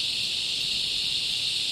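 A dense, steady chorus of cicadas buzzing continuously in a high-pitched, shimmering drone, unbroken and even in loudness throughout, with no voices present.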